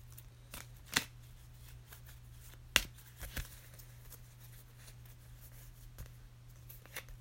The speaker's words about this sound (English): So we're gonna shuffle these cards since they fell out. All right, I'll shuffle this little section of cards and pick one.